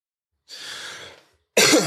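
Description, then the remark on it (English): After smoking a CBD Delta 8 vape, a long, raspy breath out is followed by a sudden, loud, harsh cough, with no talking. “Those are the weed coughs.”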